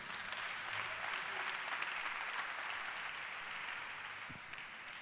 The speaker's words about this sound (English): Clap your hands for our sister. Very, very touching testimony indeed.